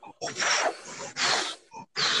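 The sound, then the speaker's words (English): Heavy, intense breathing blown straight into a microphone: a few loud, hissing breaths in and out in quick succession, rough and airy, with short gaps between them and no talking. “Breathing intensely into the mic.”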